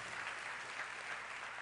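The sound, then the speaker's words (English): An audience at a church service applauds in a steady, dense wash of clapping that holds at an even level throughout, with no voices standing out above it. “Put your money where your clapping is, okay?”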